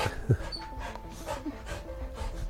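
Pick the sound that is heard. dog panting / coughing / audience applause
dog panting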